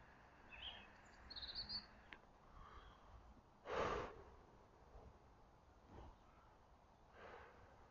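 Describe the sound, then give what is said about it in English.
Faint birds chirp outdoors in a few brief high calls near the start, over a quiet background, with a snort-like breath midway and soft breaths later. “You hear the birds? Hope you can hear the birds.”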